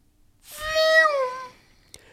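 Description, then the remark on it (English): A voice imitates a Formula 1 car with one high, whining, engine-like note that slides downward in pitch over about a second, then stops. A tiny click follows. “I just really like it when you do a F1 car noise.”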